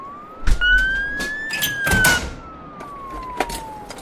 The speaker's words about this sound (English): The ambulance is here.